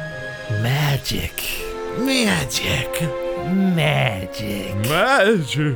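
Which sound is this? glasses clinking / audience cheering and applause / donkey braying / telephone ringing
donkey braying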